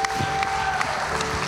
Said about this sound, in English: Come on, give them a hand clap of praise in here.